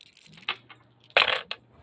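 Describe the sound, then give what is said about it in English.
Dice clatter across a hard table: a few light ticks, then a louder rattling tumble that settles, with one last small knock. Fairly quiet, with no talking. “Okay, this dice is officially going to die now.”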